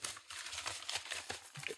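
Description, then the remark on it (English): Paper rustling and crinkling for a couple of seconds, a soft, dry, irregular crackle with small bursts as the sheets shift. No voices. “It looks like I have paper”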